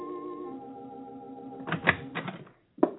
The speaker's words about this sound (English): Consequently, he was somewhat surprised one night when he answered the knock at his door.